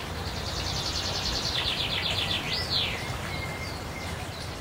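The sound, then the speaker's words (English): Birds sing in the morning on a balcony: a rapid trilling phrase, then a swooping whistled note, with fainter calls, all over a steady low background rumble and hiss. No one speaks. “And almost on cue, I'm woken up by the bird concert on my balcony the next morning.”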